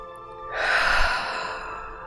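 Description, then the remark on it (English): A deep, airy breath sweeps in and flows out again during a breathing exercise, fairly loud, a long whooshing inhale and exhale with no talking. “Continue with this breathing pattern.”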